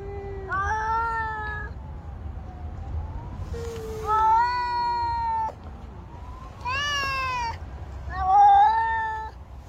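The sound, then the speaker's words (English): Two cats trade long, drawn-out yowls back and forth, each wail rising and wavering. They sound fairly loud over a low background rumble, with short pauses between calls and no talking. “Oh, I love cats so much.”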